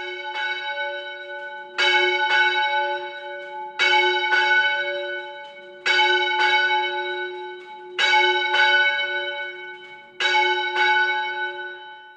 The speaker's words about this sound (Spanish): En Valencia hay una catedral. La catedral tiene una torre con campanas, un campanario que se llama popularmente el Miquelet.